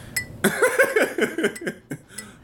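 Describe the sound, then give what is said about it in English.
Light, quick clinks of fingernails tapping against glass, an irregular run of small bright ticks with a faint ringing tone, fairly soft, with no talking. “I just cut my nails recently, so I can't really clink that well, but...”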